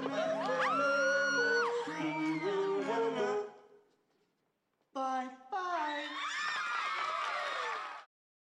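A man yells loudly and at length, with laughter going on behind him; after a short pause of near silence, a second burst of shouting and laughing follows.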